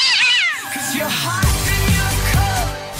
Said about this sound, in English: I can't control these cats. They're a huge problem. I frankly don't know why they're here.